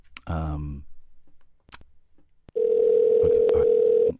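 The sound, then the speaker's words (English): A brief tonal burst and a sharp click, then a steady, unbroken telephone tone hums loudly for about a second and a half before cutting off, as a phone call is placed to America. “hover the dump button because I'm phoning Keith”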